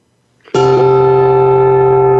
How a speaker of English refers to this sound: I'll play a very low bell now, okay? I do have to stand up to pick it up because it weighs about 9 pounds.